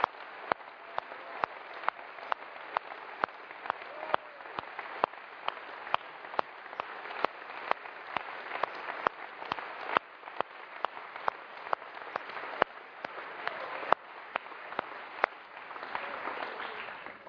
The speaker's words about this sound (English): Now that's a round of applause.